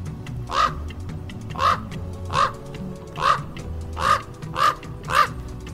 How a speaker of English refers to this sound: If you guessed raven, give yourself a pat on the back.